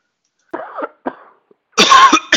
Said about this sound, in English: Done coughing?